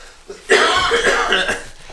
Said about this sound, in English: Do you hear the dry cough?